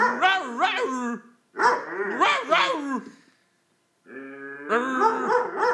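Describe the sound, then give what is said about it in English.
A person imitates a dog, letting out a string of exaggerated vocal barks and yelps in three loud bursts separated by short pauses. “You like that dog?”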